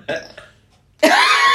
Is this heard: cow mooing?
no